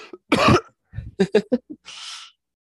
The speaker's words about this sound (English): Obviously, excuse me, I'm going to have to cough.